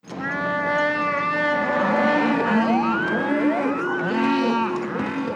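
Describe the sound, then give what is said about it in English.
A Wookiee yell sound effect from Star Wars: Revenge of the Sith: a loud, sustained, throaty roar that warbles and bends up and down in pitch, with moaning, animal-like yowls layered together for about five seconds, no speech. “And we get back into it, as you should, with Wookiee Yell.”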